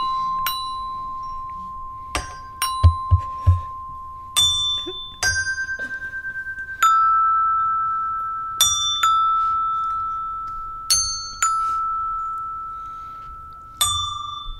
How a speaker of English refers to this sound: I need to practice my bells more. Right, here we go. Okay.